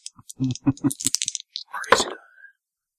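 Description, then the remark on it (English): Two ten-sided percentile dice are rolled for a percentage, clattering and rattling across a hard surface in a quick burst of sharp clicks and landing on 79, followed by a short voice sound as they settle. “Give me a percentage. Fucking dice. Percentile dice? Yeah. 2d10s. I got those.”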